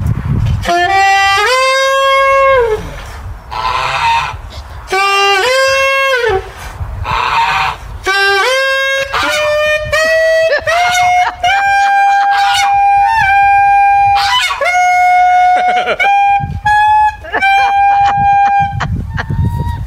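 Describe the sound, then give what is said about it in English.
A man plays a saxophone for a goose at the Clinton Presidential Library in Arkansas, a run of loud, sustained notes that step gradually upward, with harsh, nasal goose honks breaking in during the first half. “Nobody wants to hear him play his saxophone anymore, so he's playing for the goose.”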